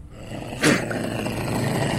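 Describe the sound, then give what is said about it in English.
A wild cat lets out one sharp, breathy hiss-spit, a quick explosive burst lasting a fraction of a second, over a steady low background hiss. No one speaks. “That hiss or that spit that comes out there.”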